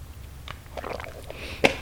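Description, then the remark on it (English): Someone takes a quick drink of hydrogen water with lime and sulfur: soft wet sipping and swallowing noises, then a sharp little click near the end. Fairly quiet, with no talking. “Let me get a little water here.”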